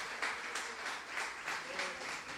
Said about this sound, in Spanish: Aleluya, aplauda, no se quede con las ganas.